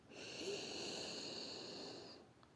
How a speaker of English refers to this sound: Okay, so first of all, we're just taking nice deep breaths in.